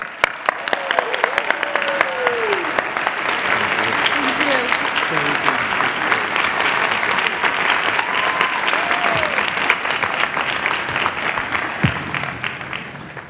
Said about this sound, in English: Please join us in a warm round of applause for Dean Feaster.